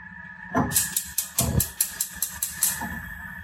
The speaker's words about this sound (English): Okay, turns out my pot's not quite big enough, but since we're basically steaming the cabbage, I don't think it'll matter. I can't cover the cabbage with water. The pot is not big enough.